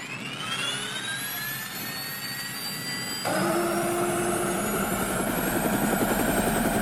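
A helicopter's turbine whines and spools up steadily, then jumps louder partway through as a low, rapid rotor chop joins in, continuous, with no voices.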